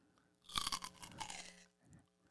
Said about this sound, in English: That's what it sounds like when he's crushing. It sounds like he's chewing celery. If you hear that in your town, you know that Harland Williams is in some comedy club somewhere.